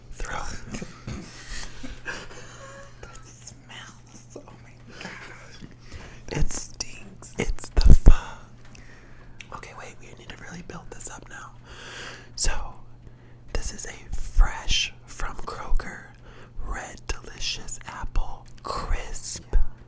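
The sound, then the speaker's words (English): A crisp bite into a red delicious apple, followed by a steady run of crunchy, wet chewing bursts at a soft level over a faint low hum. “take a bite out of an apple, and then he's going to chew it.”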